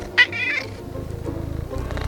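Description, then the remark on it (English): Jerry the cat meows, one drawn-out, fairly loud meow near the start, followed by softer rhythmic low murmuring from the animal. No one speaks. “With me today is Jerry the Cat.”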